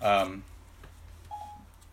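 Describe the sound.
A phone's Siri voice assistant chimes on: a bright electronic tone burst, then a brief, fainter beep a second later.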